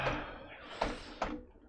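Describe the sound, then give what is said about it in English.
A door swings and is shut, a broad scraping rush ending in two quick knocks as it closes and latches, with no voices. “Shut that door.”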